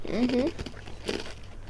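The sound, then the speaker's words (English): A basil-flavoured breadstick being bitten and chewed: a few brittle, crackly crunches in short bursts, following a brief murmured voice at the start. “Well, I can hear the crunch from here, so it must be pretty good.”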